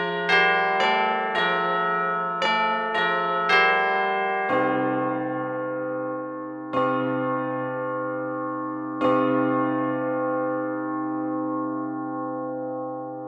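Small bells ring out in a quick cluster of six strikes, then three slower ones, each bright chime sustaining and overlapping into a shimmering, steady wash of tone. No one speaks.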